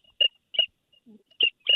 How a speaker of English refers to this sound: Here we go. We got a little teal call going on there.